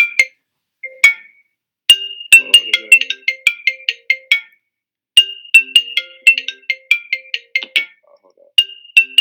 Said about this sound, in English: Hold up. My homie's phone hooked up to his computer. Pick it up, man. Let's take the fucking call.